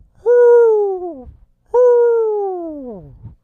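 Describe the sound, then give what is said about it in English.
Two long, loud hoots from a human voice imitating an owl, each about a second long and sliding downward in pitch, separated by a short pause. “Strong hoots for the freaks this week.”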